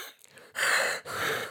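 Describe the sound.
A person imitates scuba regulator breathing: two loud, hissing breaths drawn through the teeth, back to back, with a brief catch between them.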